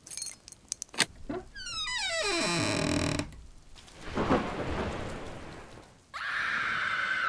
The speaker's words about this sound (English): The door is already open. I know, but the doorbell's so much fun.